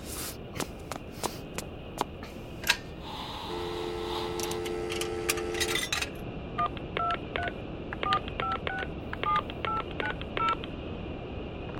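A rapid run of about ten short, clear telephone keypad beeps follows a steady dial-like tone, with scattered plastic clicks and handling noises throughout. No one speaks.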